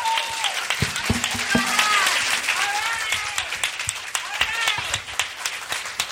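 A crowd applauds steadily for several seconds, a dense patter of many hands clapping, with scattered cheers and whoops rising over it.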